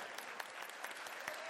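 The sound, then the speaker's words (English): An audience breaks into applause, a dense, steady patter of many hands clapping at once with sharp individual claps poking through, sustained at an even level throughout. “That was a good place for a hand clap. Let's do that right there.”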